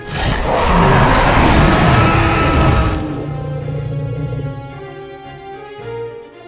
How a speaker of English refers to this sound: At the sound of another of Buck's cries, the giant T-Rex lowered its head and roared so loud it blew Bo's fedora off his head and extinguished the torches around the shrine.